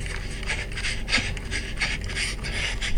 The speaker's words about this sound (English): I hear myself breathing hard.